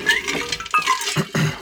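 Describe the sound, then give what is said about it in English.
Someone takes a quick drink of water, a short run of liquid sloshing and a few gulping swallows, with no talking. “Sorry, I forget to drink water.”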